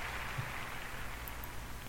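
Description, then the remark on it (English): A burst of applause sound effect: a dense, steady crackle of many hands clapping, held at an even, fairly soft level for about two seconds with no voices over it. “Some applause for that. That's a popular topic, so we're going to put some applause on that.”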